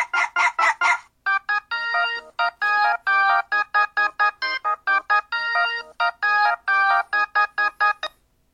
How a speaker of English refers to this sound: Here's my favorite ringtone. Playing in just a sec.